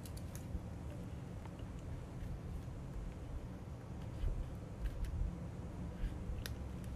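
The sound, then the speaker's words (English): Soft, irregular keyboard taps as a woman types, spaced out over a low steady background hum, quiet, with a few sharper clicks standing out now and then. “She's now typing.”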